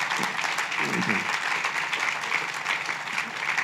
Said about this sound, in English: But they really deserve a round of applause.